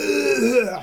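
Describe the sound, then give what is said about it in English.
A voice mimics the rough cough of an old man smoking on a bridge: one drawn-out, guttural, croaky hack lasting under a second, fairly loud, with no other sounds around it. “And then as the coffin's, like, floating past, we get this completely irrelevant shot of an old man looking over the bridge and just coughing loads.”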